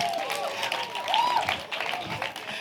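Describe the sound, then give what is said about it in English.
An audience in a church applauds steadily for a few seconds for a woman brought upstage, a dense, even wash of many hands clapping with scattered cheers and raised voices mixed into it. “So can you clap for her?”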